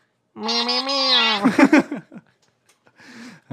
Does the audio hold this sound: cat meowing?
yes